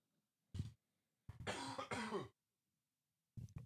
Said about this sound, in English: COVID. I still have a cough. I don't know if that's ever going to go away.